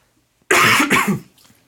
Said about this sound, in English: I'm going to cough.